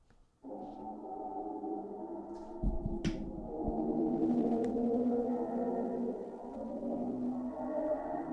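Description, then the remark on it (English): A recorded black hole sound: an eerie, continuous drone of layered, wavering tones that hum and moan steadily, with a few low thuds partway through and no voices. “what's a black hole sound like? I don't even know if they're sure. But this sound was coming from wherever they aimed either the telescope”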